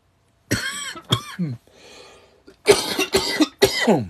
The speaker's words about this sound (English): Dang. Oof. The cough gets worse at night. Honestly, a lot worse at night.